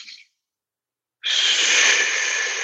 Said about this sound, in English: It goes still in the nose and out the mouth, but now we're just letting the exhale kind of fall out. So it's just a normal big inhale.